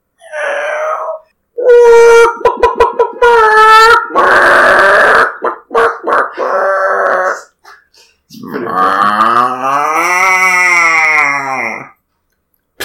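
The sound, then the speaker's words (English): A person vocally imitates a horse looking for oats, with a rapid, buzzy lip-flutter alongside voiced snorting tones, followed by a long, wavering, whinny-like cry, loud with no speech. “That's a not very good on the lips of a horse looking for someone to put oats in its”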